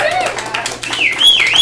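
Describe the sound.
An audience applauds to welcome the first storyteller of the night, a steady dense wash of clapping with shrill whistles and cheering voices rising over it, fairly loud throughout the short burst.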